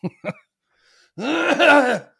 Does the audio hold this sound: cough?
yes